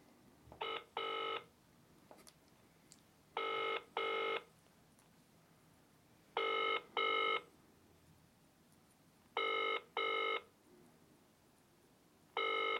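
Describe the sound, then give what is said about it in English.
An outgoing phone call rings on the line at 5:35 on a Saturday night, a steady double-burst ringing tone repeating about every three seconds, heard alone with no talking over it. “They can't not answer at 25 to 6 on a Saturday night.”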